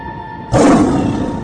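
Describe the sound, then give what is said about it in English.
A lion's roar, the roar of the Lion of Judah, bursts in suddenly after a brief quiet hum, a loud, deep, rough bellow that holds steady for about a second with no talking. “So Jack is awakened by the roar of the Lion of Judah from the city of Zion.”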